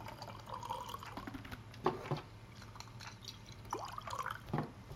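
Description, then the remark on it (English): Jura whiskey, bought in Scotland, pours quietly into a glass in an office, with a few soft glugs and small clinks against a low, steady hum; no one speaks. “And I get to pour it.”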